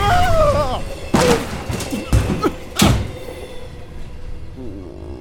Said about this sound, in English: Here. That's no way to exit a moving train, my boy. You've got to hold your arms out like a barrel, and then roll away from the tracks.